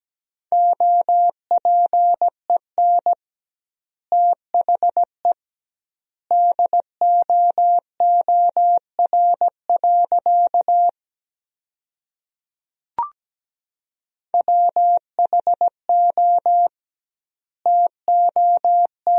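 Morse code sent at 17 words per minute with double word spacing, sending practice sentences built from the 300 most common words: a steady mid-pitched tone keyed into quick dots and dashes, in bursts separated by longer pauses, with one faint click in a gap.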